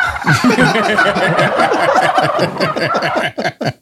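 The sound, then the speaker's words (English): A person makes a rapid, warbling gobble-like cackle with their voice, mimicking a turkey in a loud, continuous burst that breaks into a few choppy sputters at the end. “sounds like a turkey over here.”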